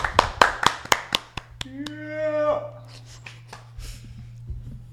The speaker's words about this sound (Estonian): Meil nagu oleks stuudiopublik olnud. Ja meil on stuudiopublik siin ka, nii et plaksutame neile ka.